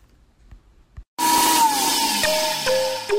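After a second of near silence, a blender suddenly roars to life, a loud steady motorized whir whose pitch drifts slightly lower as it runs, with no voices.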